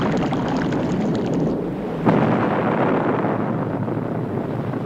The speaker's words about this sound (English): That was an explosion inside the hull.